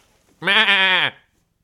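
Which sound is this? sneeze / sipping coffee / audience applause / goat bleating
goat bleating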